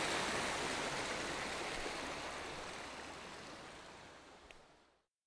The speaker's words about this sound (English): You know, I stand around in rivers like this with the cold water washing over me